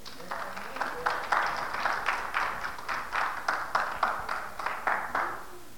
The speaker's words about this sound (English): But come on. She needs applause right now.